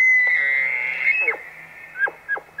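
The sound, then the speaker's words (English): An elk bugles: a long, high, wavering whistle that holds steady, then breaks into three or four sharp, descending grunting chuckles. A low steady hum runs underneath, with no talking. “What a crazy animal. It is not something you get sick of hearing.”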